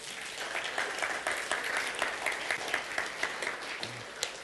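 A crowd applauds steadily for several seconds, a dense wash of many hands clapping with scattered sharper claps standing out, holding a fairly even level throughout.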